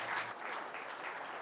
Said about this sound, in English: All right, a big hand for all of our startups tonight.